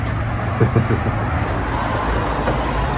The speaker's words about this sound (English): it's a car park. You can't leave commercial vehicles in here.